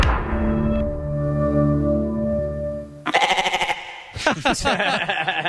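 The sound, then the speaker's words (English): A goat lets out a long, loud, drawn-out bleat, followed by a couple of shakier, wavering bleats in quick succession; a goat call considered by Netflix for its intro sound. “He thought the goat was a fun, quirky thing. So this is almost what your Netflix sounded like.”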